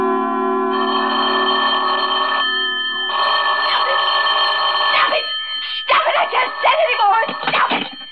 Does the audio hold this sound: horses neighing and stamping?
no